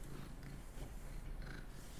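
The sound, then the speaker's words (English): A cat purrs in a steady, low rumbling drone that continues without a break for the whole two seconds, quiet but even, with no voices. “just blatantly ignoring his cat.”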